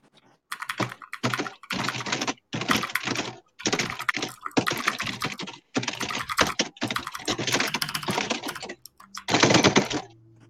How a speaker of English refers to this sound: This is how it sounds when he's typing during class.